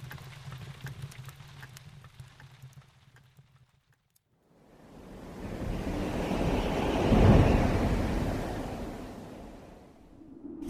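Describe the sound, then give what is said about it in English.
A strong, unending southern wind blows through fog in a roaring gust that swells loudly to a peak and then eases off, following a few seconds of quieter, low rumbling background. No one speaks. “You'd think this unending southern wind would blow away the fog sometime.”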